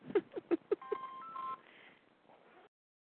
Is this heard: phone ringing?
yes